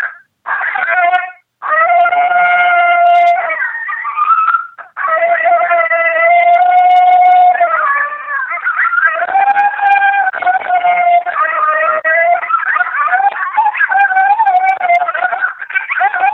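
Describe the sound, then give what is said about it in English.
Recorded coyote group yip-howls played at night while driving around locating coyotes: several overlapping high, wavering howls and quick yips that rise and fall. The loud chorus runs almost continuously for about sixteen seconds, with two brief breaks early on. “At night, when I'm locating, driving around, I use coyote group yippals, and that's this sound.”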